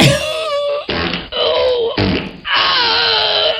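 A phone app plays a fart sound effect: a run of loud, buzzy, wavering blasts, about five in a row with brief breaks between them, the last one longest. No one speaks.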